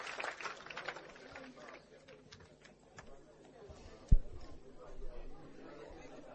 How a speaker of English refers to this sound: Clap for Jesus. You may go back to your seats.